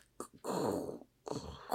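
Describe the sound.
Someone vocally imitates footsteps crunching on snow: a short gritty burst, then a longer grinding crunch and another rough burst, fairly loud, with no words spoken.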